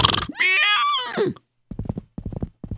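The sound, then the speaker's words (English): A horse lets out one loud, wavering whinny lasting about a second, followed by a quick run of rhythmic hoof clops. “Okay, giddy up, horsey.”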